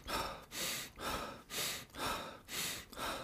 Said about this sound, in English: You can breathe out through your nose. right? Or you can breathe in through your nose and out through your mouth.